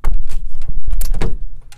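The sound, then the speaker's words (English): A door is opened with a loud clunk and rattle, followed by a brief burst of scraping and creaking as it swings; it is opened for a young adult who kept knocking. “Let me open the door, for he keeps knocking.”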